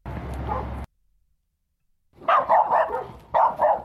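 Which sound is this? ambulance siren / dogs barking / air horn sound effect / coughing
dogs barking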